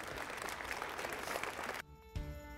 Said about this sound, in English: Give the Lord a hand clap, would you? Praise God.